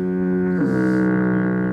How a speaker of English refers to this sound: You can foghorn that if you want.